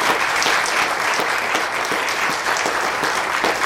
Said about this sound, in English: Do you think he can hear us if we applaud? Can we try? Let him hear us?